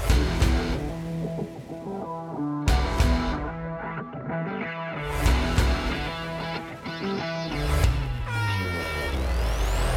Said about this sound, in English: You hear the air horn sounding, marking the final 2 minutes of the Open Red Flag conditions.